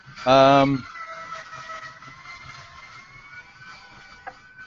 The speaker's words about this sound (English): What the hell is that? Somebody having work done. Not me. Sounds like a vacuum cleaner.